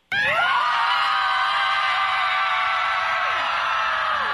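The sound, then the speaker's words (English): A loud, sustained scream from a group of about 56 mothers on a sports field in Boston, screaming out their frustrations, many voices blending into one continuous roar that starts abruptly and holds steady for several seconds. “Did you hear the sound of like 56 angry moms all at once?”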